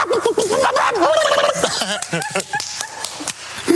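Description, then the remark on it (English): A person imitates a chicken, making warbling, wavering clucks and squawks with a rising and falling pitch, loud and continuous for several seconds, then breaking into short choppy bursts. “You did the chicken.”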